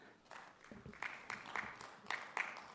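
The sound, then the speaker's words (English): A concert crowd claps and cheers as a guest musician is brought on stage, with scattered sharp claps and a few whoops rising over a steady wash of applause. “The crowd goes wild.”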